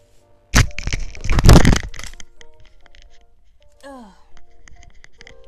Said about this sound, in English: Sorry. That pause you just heard was my phone falling down because I am clumsy as fuck.